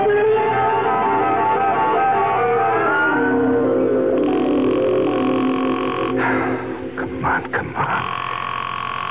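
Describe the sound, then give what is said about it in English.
A telephone rings with a steady, buzzy electronic tone that holds for several seconds, then breaks into a few choppier bursts near the end, heard clearly with no one talking. “Answer the phone.”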